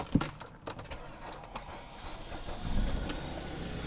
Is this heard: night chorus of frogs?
no